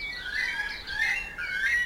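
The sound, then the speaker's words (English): A weka shrieks before dawn at Endeavor Inlet in three quick, shrill whistled calls, each rising and wavering, loud, with no one talking and only faint background hiss. “Question: why did the weka shriek before the sun came up?”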